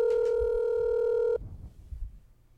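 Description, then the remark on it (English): A loud, steady electronic telephone keypad tone sounds for just over a second, then cuts off abruptly, leaving quiet, low background rumble. “He is on the phone. Here we go.”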